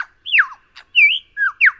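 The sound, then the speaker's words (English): A superb lyrebird runs through a quick string of mimicked bird calls: swooping whistled notes, a short buzzy burst, then more sliding whistles, clear with no voices. “The source of the echo is the bird song chameleon, known as the superb lyrebird.”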